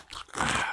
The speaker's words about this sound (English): I'm eating some of these plantain crisps.